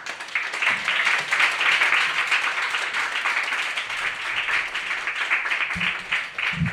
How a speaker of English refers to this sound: Congrats again on the first time. Let's clap one more time for her first time reading.